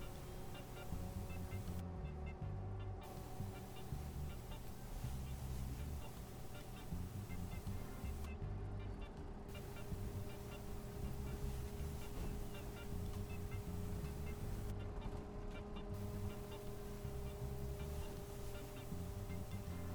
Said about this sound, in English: Finally, the bus stops in front of a tall wall of thick scarlet hibiscus bushes.